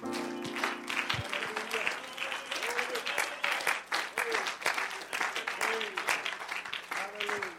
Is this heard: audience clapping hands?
yes